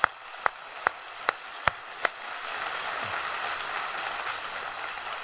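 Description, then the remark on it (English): A few sharp, evenly spaced single claps ring out, then a whole church audience joins in with a steady, dense wash of applause that carries on to the end, honoring their pastor and first lady. “Just give him a hand clap if you would.”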